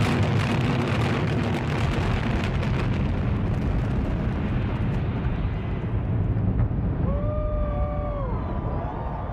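A coordinated implosion of a 17-story hotel tower on an April evening: rapid crackling blasts give way to a deep, continuous roaring rumble as the structure collapses, loud and sustained, with faint whistling tones rising near the end.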